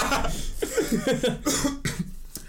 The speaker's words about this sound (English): Thanks for coughing on the pod. Yeah, no problem. It was embarrassing.